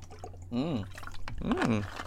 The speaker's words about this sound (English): So, see, I'm not even going to edit this out. I'm drinking some water. Okay?